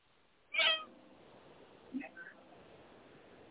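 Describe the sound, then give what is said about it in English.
A cat gives one loud meow near the start, short and rising, followed by faint background sounds and some soft talking. “Hi, kitty.”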